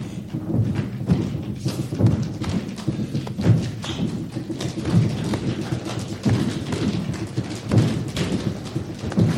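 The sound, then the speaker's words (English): Deep, heavy thumps repeat in a steady heartbeat-like rhythm, like stomping on the ground, fairly loud with a rumbling low-end texture between beats and no voices. “He kept on thumping to his heartbeat, stomping the ground and shaking the planet.”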